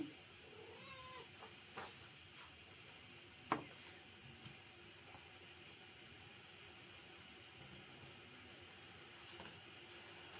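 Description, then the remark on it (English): A cat meows faintly a couple of times early on, short and high, over a steady background hiss, followed by a sharp knock and then quiet ambience. “Oh, hello, kitty.”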